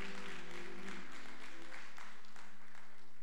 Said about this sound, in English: Can I get a hand clap for him? Can I get a hand clap for him?